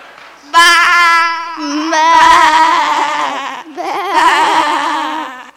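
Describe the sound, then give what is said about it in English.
A person imitates a sheep with loud, wavering bleats, three drawn-out quavering cries in a row with hardly a pause between them. “I want to be a sheep too. So do I. Listen, I've even got the accent down.”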